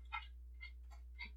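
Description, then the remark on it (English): A female dog scratching at a door: four short, faint scraping bursts spaced irregularly, each a quick rasp over a steady low hum, with no talking. “The dog's scratching at the door right now.”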